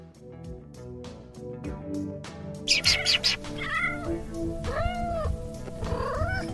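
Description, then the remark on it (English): A kitten meows several times, its short, rising-and-falling cries standing out over steady background music, with a brief bright burst just before the meows. “Why do kittens, puppies, and human animals play?”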